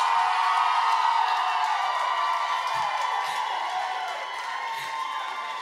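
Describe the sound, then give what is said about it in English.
An audience at a debate cheers and whoops loudly and continuously for the team they judged better, a dense roar of many voices with scattered shouts rising above it, fading slightly toward the end. “Did I just hear the affirmative cheering for the negative?”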